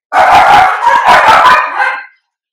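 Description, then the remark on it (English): A pet dog barks loudly in a rapid, aggressive flurry of sharp barks lasting about two seconds, with no one talking over it. “Why was that so aggressive? Dog. You okay?”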